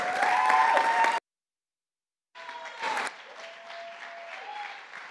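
Audience applause fills the room in two bursts separated by a brief silence, a dense wash of many hands clapping at once, fairly loud and steady, with faint crowd murmur underneath.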